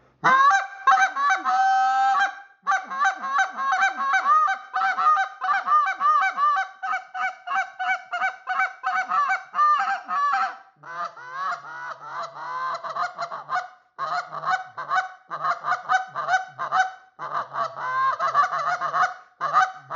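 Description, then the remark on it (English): A short goose call, the Exit, just over 4 inches long, is blown in rapid, loud honking runs, with quick clucks and drawn-out honks varying in pitch, clear for the whole stretch with no talking. “But this little Exit, it's a short call. I'm going to say it's just a little over 4 inches. And I'll give you a run on that.”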